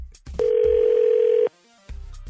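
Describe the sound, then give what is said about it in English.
A single steady, mid-pitched electronic tone of an outgoing call to a woman ringing out during the Second Date Update segment on radio station 102.9 The Wolf, loud and lasting about a second, then silence with brief low thumps before and after. “We're about to call one of those two women,”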